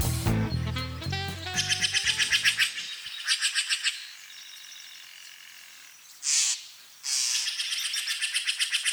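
Several songbirds sing along the banks of the Russian River, just north of Marin County, trading rapid, high-pitched trills and chirps in pulsing bursts, with a lower warbling call at the start and two sharp, loud whistled notes near the end.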